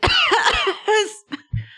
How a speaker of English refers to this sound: I'm not actually coughing. I'm doing an amazing job acting.